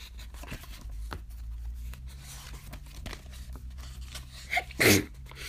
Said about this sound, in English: I'm finna sneeze.